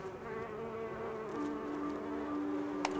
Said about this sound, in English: They might also help more beekeepers access bee-saving technology that involves taking a closer look and listen to the secret life of bees.